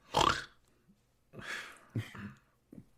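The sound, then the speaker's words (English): A voice imitates loud snoring: a harsh, rasping snort up front, then a few rougher, gurgling snorts after a short pause, the last one brief and quieter. “I probably snore louder actually because of the slap.”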